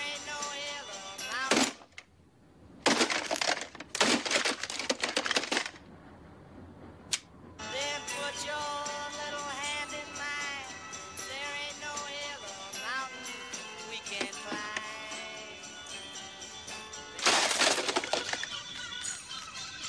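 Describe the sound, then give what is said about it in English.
In a film clip, Bill Murray's character smashes an alarm clock: several loud, harsh crashing bursts in the first few seconds, then a long stretch of steady tonal music-like sound, and another heavy smash near the end. “He got tired of that alarm clock.”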